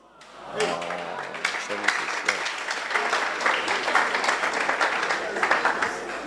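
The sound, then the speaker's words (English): A crowd bursts into sustained applause for audience members over 70, many hands clapping in a dense, steady wash, with a few voices and cheers mixed in near the start. “Clap for them.”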